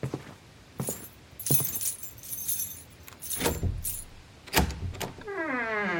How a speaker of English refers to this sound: I unlocked the door and entered.